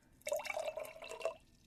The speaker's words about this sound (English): Today, if you could see me, you would see that I have a big pitcher of water, a dropper, and a cup, and a bucket to hold it all. As I place the cup inside of the bucket, I'm going to start by pouring water. Can you hear that?